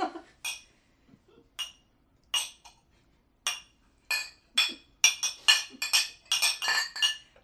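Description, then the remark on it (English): Drinking glasses clink with bright, sharp hits, spaced out at first, then coming faster into a dense cluster of overlapping clinks and rattles near the end as a glass breaks. No one speaks. “We can't stop when a glass breaks because that's...”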